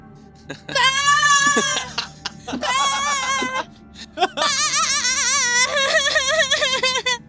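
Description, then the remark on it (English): Voices imitate a sheep's bleat in several loud, wavering bursts, one after another with short pauses, the last drawn out with a shaky vibrato. “What is it with you all and sheep?”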